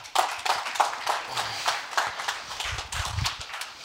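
A crowd applauds, with many hands clapping in a dense, steady patter that stays fairly loud for a few seconds. No one speaks over it.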